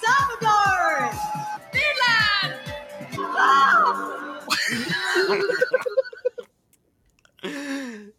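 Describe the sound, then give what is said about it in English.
At the Miss World pageant, Miss France shrieks her country's name from a stage, loud and high-pitched, after several seconds of excited, laughing voices and a brief pause. “And so what I learned was in Miss World, in order to introduce themselves, they make the ladies go up on stage and scream out the name of their country.”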